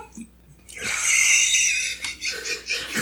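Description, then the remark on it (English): A person lets out a loud, shrill, panicked, acted blood-curdling scream lasting about a second, then trails off into strained, breathy vocal noises. “Till they heard blood-curdling scream.”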